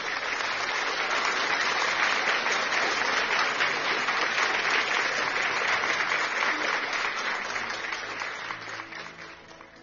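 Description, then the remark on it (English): A church audience claps hands to give God a mighty clap, in sustained, dense applause lasting several seconds, loud and steady before tapering slightly at the end, with no one speaking over it. “Let's give God a mighty clap of hands.”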